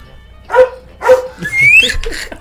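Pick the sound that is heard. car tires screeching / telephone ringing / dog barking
dog barking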